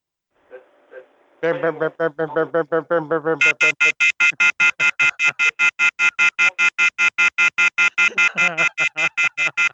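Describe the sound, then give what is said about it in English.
A loud, rapidly pulsing electronic telephone off-the-hook warning tone, from a phone left off the hook, beeps in a fast, steady rhythm for several seconds, with muffled voices faintly underneath. “His phone is off the hook.”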